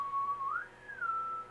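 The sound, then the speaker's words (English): A person whistles a short call alone, a clear tone that holds, slides up to a higher pitch, then glides back down and settles, all in about a second and a half. “And her whistle?”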